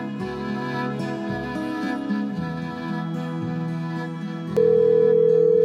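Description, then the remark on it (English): A telephone ringing tone from a phone call to a friend cuts in near the end, a steady, fairly loud electronic hum lasting over a second, after several seconds of soft background music. “This phone call was to my friend”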